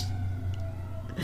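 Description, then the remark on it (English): An emergency vehicle siren sounds outside, a steady held tone over a low engine rumble, muffled, with no voices. “You don't hear the sirens. You don't hear the sirens. Okay. They're after us.”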